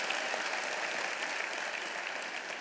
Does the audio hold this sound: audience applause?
yes